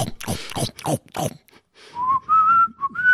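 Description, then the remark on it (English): A voice speaks briefly, then a person whistles a short tune of a few sustained, clear notes that rise, dip and rise again, loud and steady. “I walk and I whistle, yet wallowing follows.”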